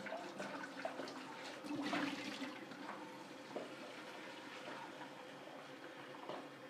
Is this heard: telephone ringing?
no